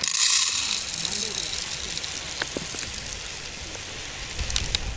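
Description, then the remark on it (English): Bird seed pours into a one-cup measure for a bird food mix as a steady, granular hiss, like light rain, dotted with small scattered ticks of individual seeds, holding an even level for several seconds. “You want to help me pour this bird food into this one cup?”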